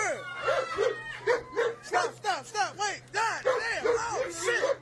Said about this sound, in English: I feel bad for this dog in the cage. Cause he doesn't know what the hell's going on, huh?